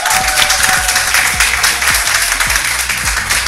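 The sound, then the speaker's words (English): An audience at a high school breaks into loud, sustained applause for spelling bee champions, many hands clapping in a dense, steady roar that stays at full strength throughout without any talking. “Give a round of applause for these Spelling Bee champions.”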